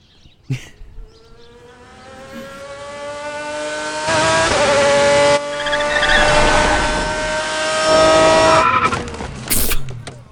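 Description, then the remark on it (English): A car engine revs hard in an advertisement, holding a loud, strained whine for several seconds as it builds, then cuts off abruptly, followed by a couple of brief knocks. No one speaks. “Nice car, by the way.”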